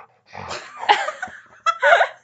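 A dog close by makes muffled, strained noises in a few short bursts, breathy grumbles and whines rising and falling, with brief pauses between them and no talking.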